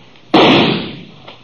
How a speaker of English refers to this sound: I couldn't make him out. He was just a shadow partway up the canyon wall, maybe 30, 40 feet. His gunfire gave me a pretty good notion where to aim.